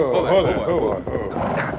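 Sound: horse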